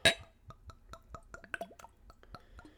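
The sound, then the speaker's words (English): A bright glass clink, then a steady run of gurgling glugs as a low-proof drink pours from a bottle into a glass to refill it, the tone shifting as it fills. No one speaks. “But before I get to that, I gotta fill my glass again.”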